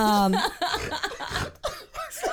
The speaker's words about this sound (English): He's not throwing up. I was trying to cough. I'm sorry.